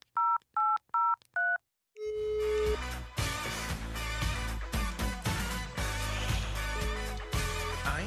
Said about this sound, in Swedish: Okej, vi ringer den här tjejen. Kör.